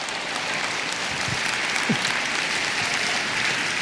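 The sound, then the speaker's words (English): Steady audience applause fills the whole stretch, a dense wash of many hands clapping at an even, sustained loudness with no pauses or voices standing out. “Let's clap it up for these guys.”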